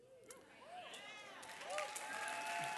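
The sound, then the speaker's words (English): An audience claps in a steady, dense wash of applause that builds slightly toward the end, with murmuring voices mixed in underneath. “I'm not sure why they got a clap.”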